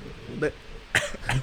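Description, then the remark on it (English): A person coughs three times in quick, uneven bursts, each short and rough, moderately loud against a faint background murmur. “He's coughing.”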